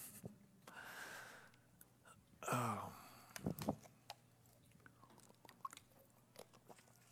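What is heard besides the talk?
sipping and swallowing water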